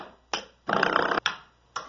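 Twangy spring doorstop strikes played as a beat, recorded and played through a computer as the instruments of a song version: sharp plucks with quick decays, plus one longer buzzing, wobbling twang in the middle, with no voices.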